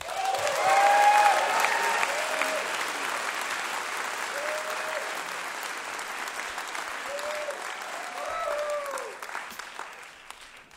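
A crowd claps steadily for about ten seconds after a live music performance, loudest at the start, with a few rising whoops and cheers scattered through and a brief swell of enthusiasm near the end.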